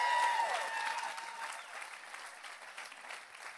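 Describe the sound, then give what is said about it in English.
A church audience claps their hands for Jesus in a dense, steady five-second burst of applause that gradually thins and softens, with a faint tonal sound lingering under the first second. “Come on, if you really believe it, give him a 5-second hand clap today.”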